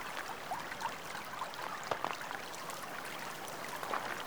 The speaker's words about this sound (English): The water flows, and you enjoy its sound as you walk the path following it.